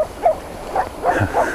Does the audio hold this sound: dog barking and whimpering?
yes